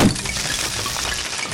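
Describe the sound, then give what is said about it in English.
A dense, brittle clatter of an exploded skeleton's bones tumbling to the ground as electricity crackles along them, a loud burst of cracking and rattling that keeps spilling for over a second with no voices. “The electricity just crackles along the bones as they all just clatter to the ground.”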